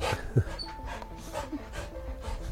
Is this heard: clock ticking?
no